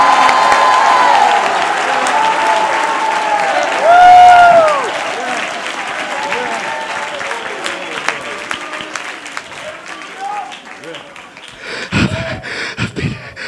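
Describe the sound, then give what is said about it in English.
A large audience claps steadily and loudly, shouting unto God at a preacher's call, with excited shouts and raised voices rising through the dense applause, which eases slightly before a brief renewed burst near the end. “My God, clap your hands and shout unto God with the voice of triumph.”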